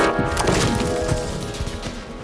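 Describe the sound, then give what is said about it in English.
A loud bang of something falling off a roof, heard as a woody crash with several sharp cracking thuds and splintering clatter that carries on for about two seconds. “And all of a sudden, she'd hear a loud bang as it sounds like something fell off the roof.”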